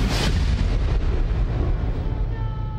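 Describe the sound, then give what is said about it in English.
A loud rumble of thunder from an approaching storm opens with a brief sharp crack, then rolls on as a deep, steady roar for nearly three seconds, with no voices. “Storm coming”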